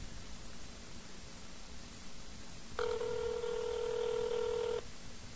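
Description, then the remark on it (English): A single steady telephone tone of about two seconds, an outgoing call ringing as a man is being called, sounds over a constant background hiss, with no one speaking. “We're all upset about what happened today, and we're going to give this guy a call. Here we go. Let's see if he's all that much interested. Okay, we're calling him.”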